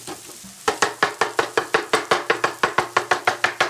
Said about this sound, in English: So now, an ode to the dish's name, we chopping. Here, look, if you go in here.